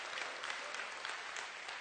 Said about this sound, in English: Can I get a hand clap right there? Thank you so much. I appreciate that.